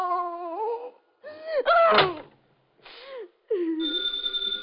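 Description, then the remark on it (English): A telephone rings again and again in several loud bursts with short gaps between them. No one speaks. “The phone kept ringing. And ringing.”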